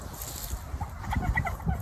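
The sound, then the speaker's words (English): A voice imitates a turkey's gobble: a quick, warbling run of throaty pulses, moderately loud, building over about a second with no other talk around it. “So … is going to have an interview with one of the stunt double turkeys.”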